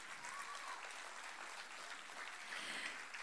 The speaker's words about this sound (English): So teachers, don't be shy. Come on up. And let's give them a round of applause.